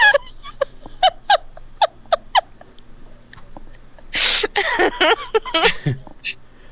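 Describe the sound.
A person imitates a goose: a quick run of short, nasal honks, then a few louder, raspier honking blasts, with no words spoken.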